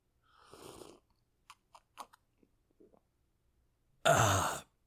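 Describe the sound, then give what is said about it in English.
Sipping whiskey, a small sip: a soft inhale, a few small wet lip and swallow clicks, then a loud, breathy satisfied exhale at the end. No one speaks. “It is a small sip of whiskey.”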